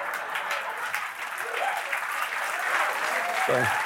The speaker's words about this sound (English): The Alexa key got a round of applause.